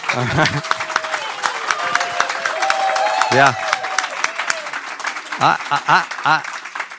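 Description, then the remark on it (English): A crowd claps steadily for several seconds in a dense, continuous patter, with a few voices calling out and speaking over the applause. “All right, how about one more round of golf applause?”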